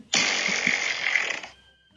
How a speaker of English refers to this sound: Try asking me for an engine rumbler fart. Or say random. Engine rumbler fart, please. Here comes an engine rumbler fart.